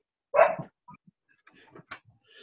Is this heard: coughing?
no